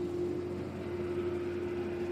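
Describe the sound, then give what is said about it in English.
A lawn mower drones steadily outside the window, a constant mid-pitched engine hum with a buzzy rumble underneath, holding an even loudness throughout with no voices. “Man, these lawn mowing people.”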